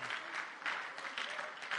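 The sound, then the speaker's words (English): A church audience claps hands to the Lord in thanks, a dense, steady wash of many overlapping claps with slight surges in volume, bright and crackly, with no voices clearly standing out. “Can you clap your hands to the Lord and thank him?”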